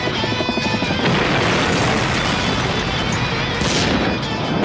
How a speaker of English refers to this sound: Explosions from Michael Bay! Boom! Michael Bay explosion! Bam! Boom!